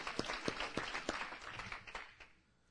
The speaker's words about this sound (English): Come on, we can take our hand claps up a little higher.